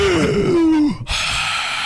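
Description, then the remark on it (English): A voice imitates excited, sharp breathing in: a falling groan-like vocal sound, a brief pause, then a rush of breathy air that carries on to the end. “He'll just like take a lick of ice cream that he likes and he's like, And his ass like starts breathing in like jubby jubby. It makes that noise.”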